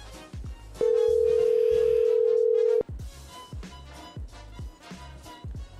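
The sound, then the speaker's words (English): A telephone ringback tone sounds once as a loud, steady two-second hum, the call ringing out unanswered, while rhythmic music with punchy drum hits plays underneath. “Why do you not answer the phone?”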